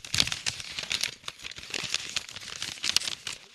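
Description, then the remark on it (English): Paper crinkles for a few seconds in a dense run of sharp, crackly rustles, rising and falling in bursts with no talking over it. “Okay, this is me crinkling paper, right?”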